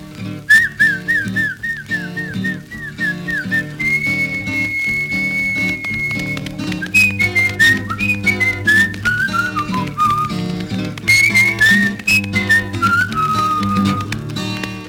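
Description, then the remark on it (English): A person whistles a bright, warbling melody with sliding and trilling notes, loud, over steady instrumental music with a full bass line, whistling to call a dog named Frankie Jean. No one speaks. “You gotta whistle to her. So I whistled to Frankie Jean. Something like this.”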